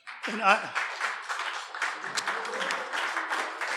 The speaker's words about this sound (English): You have to applaud as much for him or he'll sulk.